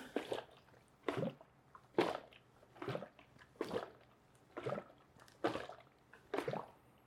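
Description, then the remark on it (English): Liquid sloshes inside a small film developing tank as it is inverted for the last time while developing film with coffee, a household developer: about eight even, rhythmic swishes, with no one talking. “Okay, this is the last inversion.”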